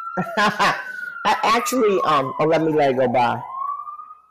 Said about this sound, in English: I actually hear the sirens in your background, and I'm like, oh. Yeah, don't you hear that? Yes, honey. I miss it. I actually hear it again, but not enough.